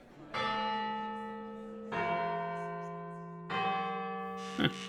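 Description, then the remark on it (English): A church bell tolls three times at a slow, even pace, each loud strike ringing out with a rich sustained tone that fades before the next. “Let me get that bell installed.”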